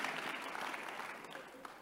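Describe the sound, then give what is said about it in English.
A crowd claps for the Lord steadily throughout, a dense, continuous patter of many hands at fairly even loudness, tapering slightly toward the end. “Give the Lord a clap of.”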